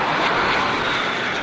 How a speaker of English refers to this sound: FA-18 strafing ground targets with a machine gun on a U.S. weapons range near Guam.